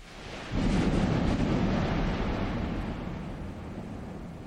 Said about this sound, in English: It was a cool place, I stopped and had dinner, and then as I was heading back to the hotel, a Texas-sized storm moved in.